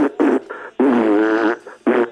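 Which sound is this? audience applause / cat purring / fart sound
fart sound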